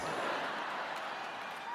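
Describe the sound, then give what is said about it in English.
Steady audience applause, a dense wash of many hands clapping at once with no individual claps standing out, holding level for just under two seconds. “Don't applaud them, it only encourages them.”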